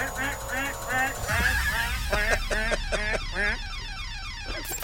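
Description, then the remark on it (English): A man's voice imitates a duck with a rapid string of loud, nasal quacks, filling several seconds in an uneven, honking rhythm. “will you give us your duck impression again?”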